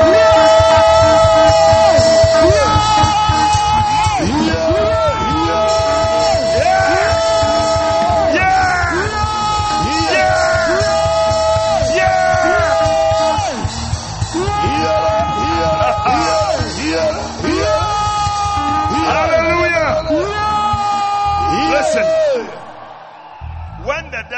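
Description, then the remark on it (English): A crowd shouts and yells together in loud, sustained bursts of rising and falling voices, with overlapping cries and whoops filling the whole stretch before fading slightly at the end. “Listen, this kind of shouting is not the shout of the king.”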